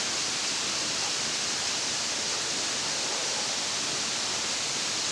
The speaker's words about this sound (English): I think we're at the top of the falls.